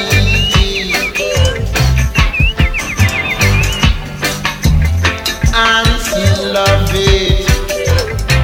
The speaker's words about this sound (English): Birds.